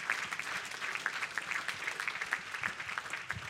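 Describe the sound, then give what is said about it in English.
An audience claps their hands unto the Lord in praise, sustained, steady applause, a dense patter of many overlapping claps at a moderate level throughout, with no voices standing out. “Why don't you clap your hands unto the Lord right now and give him praise?”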